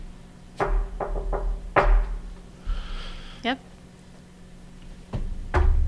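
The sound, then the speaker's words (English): Several sharp knocks on a table land at irregular intervals, some in quick pairs, with a short spoken word and faint background murmur between them, made by a person knocking during a paranormal investigation. “Well, I'm not going to knock on the tables, but you'll do.”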